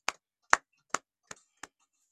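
Five sharp hand claps ring out one after another at a slightly slowing, uneven pace, fairly loud, with silence between them and no talking, given as a clap of praise to Jesus Christ.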